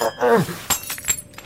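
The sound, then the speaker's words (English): A glass cactus ornament shatters: a short vocal exclamation, then a sharp crash and a second bright burst of breaking glass, with high tinkling fragments trailing off into quiet. “Ain't this a glass cactus?”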